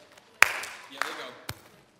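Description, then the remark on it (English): A group including parents practises body percussion in a chest, legs, clap pattern like at a sporting event, thumping chests, slapping legs and clapping, making sharp hits about every half second, some louder than others, over a low murmur of voices. “Doom, doom, clap.”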